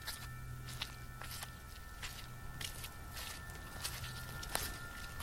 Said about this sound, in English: Footsteps. I looked around, but I couldn't tell where they came from.